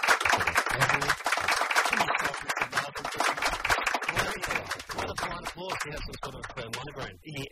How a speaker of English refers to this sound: Just polite applause this morning